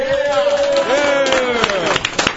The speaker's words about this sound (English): Yeah! Are you cheering because he's leaving or because you like him?